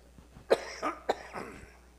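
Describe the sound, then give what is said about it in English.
Several fairly quiet coughs from a preacher during a sermon come in quick succession, sharp bursts spaced unevenly over about two seconds, with no talking. “Excuse me, I'll try another cough drop here.”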